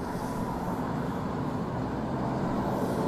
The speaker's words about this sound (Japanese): 結構かなり街は活気づいてる感じが、背景の感じからしますね。 車通ってるよね。 そう、車は増えてきました。でもこれでも全然少ないですね。住宅街っていうよりも割とその人通りも車通りも多い場所なんで、全然まだまだという感じですね。